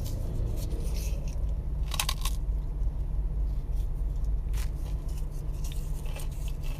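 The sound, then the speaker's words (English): Crisp crunching as a wafer ice cream cone is bitten into, a couple of sharp crackly bites over a steady low hum, with no talking. “But this ice cream cone is vibrational, so partially.”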